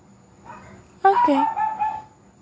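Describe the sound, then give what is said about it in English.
A short burst of dogs barking, sharp high-pitched yelps and whiny cries lasting about a second, moderately loud, preceded by a faint low murmur. “Guys, can we take a moment and appreciate the dogs? Oh, they made silence now. Oh, there they go.”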